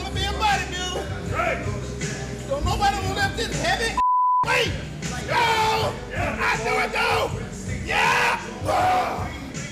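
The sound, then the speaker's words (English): Loud shouting and crowd noise are cut by a single steady, high-pitched censor bleep lasting about half a second, covering a word said by a bodybuilder, before the yelling and cheering resume. “And so, I mean, hopefully we bleeped out.”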